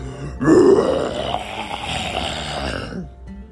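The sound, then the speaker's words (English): A voice lets out one long, loud, rough roar, imitating a story character's ginormous roar as they near a waterfall, rumbling and gravelly for nearly three seconds before trailing off. “As they got closer to the waterfall, Roger got ready and let out a ginormous roar.”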